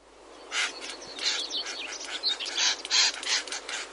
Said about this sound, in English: Well, what they do is they make very loud calls and they snap their beaks with a loud clicking sound. In fact, we have a recording of it here.